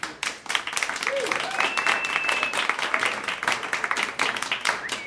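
A crowd applauds steadily, dense clapping filling the whole stretch at a fairly loud, even level, with a few whoops and whistles rising above it.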